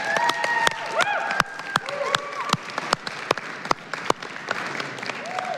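An audience at a church service breaks into steady applause for the person who led the service, many hands clapping at once with sharp individual claps standing out, while a few voices call out faintly in the background.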